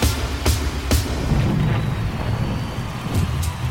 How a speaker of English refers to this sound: And, you know, it is a live performance, so we have to get some thunder. Oh, yeah. At the end? Well, that's how you know it's over.